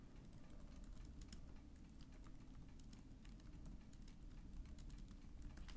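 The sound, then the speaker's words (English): Rapid, steady typing on a computer keyboard, a dense run of clicks and key taps over a low background hum, with no one speaking, as someone types a search query into a web search engine. “So I'm just typing into Google, radius of blank”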